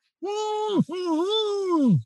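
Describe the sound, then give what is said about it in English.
A voice yells through a vocal warm-up device to reset the voice and bring the vocal cords into alignment, in two loud, sustained bursts, a short one then a longer one. Each holds a steady, buzzy pitch that wavers and then drops away at the end. “And I'm going to yell when I'm going to yell through this to make my cords in alignment and ready to go.”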